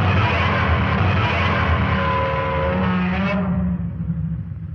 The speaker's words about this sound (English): Okay. Godzilla. That's Godzilla. Shit. Yeah, it's Godzilla.